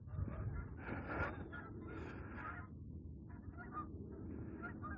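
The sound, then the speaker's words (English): A flock of Canada geese honking continuously, overlapping calls in irregular bursts, fairly loud, with no one speaking. “Canadian geese. Ninja Canadian geese, apparently. Heard but not seen.”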